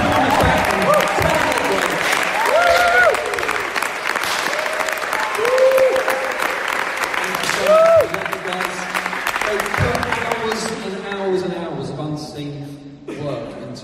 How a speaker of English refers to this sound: Why don't our trustees just stand up? So you can see who you are, and let's just clap you and bless you.